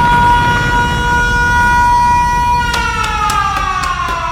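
A loud, steady siren sound effect wails with sustained tonal pitch over low rumbling noise, joined near the end by a few sharp metallic clanks or bell-like hits.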